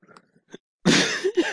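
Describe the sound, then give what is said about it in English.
A single loud sneeze bursts out abruptly after a few faint soft noises, a sharp, breathy blast of noise that trails off with a short voiced tail. “Bless you.”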